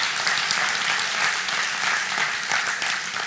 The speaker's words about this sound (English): Amen. Clap.